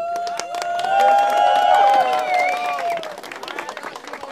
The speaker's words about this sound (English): Cue in the applause.